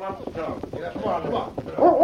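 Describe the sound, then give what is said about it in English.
A dog named Rusty barks and whimpers in short, excited bursts, with higher-pitched whines rising toward the end, while voices murmur in the background. “The dog well worth owning.”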